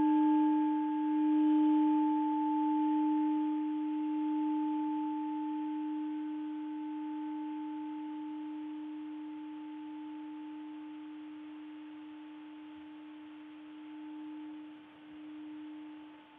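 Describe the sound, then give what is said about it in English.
A single bell, rung to mark a closing, rings out with a low, steady hum and a fainter higher overtone, its tone lingering for many seconds as it slowly fades toward silence. “So I'll invite a closure with the sound of a bell.”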